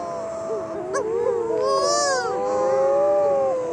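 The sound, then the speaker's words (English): Several mutton birds (shearwaters), arriving on an island where one has crash-landed, give drawn-out, wavering moaning calls that rise and fall in pitch, overlapping one another over a steady hiss, sounding almost like crying infants. No one speaks. “A bird has crash-landed and it's... moaning, like it's stubbed its toe. It's a mutton bird, and here come all its friends.”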